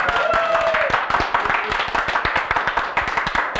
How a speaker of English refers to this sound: Technical difficulties, but thank you. Applaud us for getting through it. This is live TV.